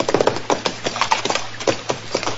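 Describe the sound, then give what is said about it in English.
Mr. Dillon's horse, which has a loose shoe, clip-clops in a steady, uneven rhythm of sharp knocks, moderately loud, with no voices over them. “Hey, that horse of yours has got a loose shoe, ain't he, Mr.”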